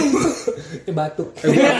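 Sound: cough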